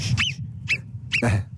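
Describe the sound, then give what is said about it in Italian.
A sentinel marmot's shrill alarm whistle, given when someone approaches, sounds four times in quick, uneven succession. Each call is a sharp, high, squeaky chirp that bends downward, over a steady low rumble. “La marmotta sentinella, sì, perché perché le marmotte vivono sottoterra, ma alcune...”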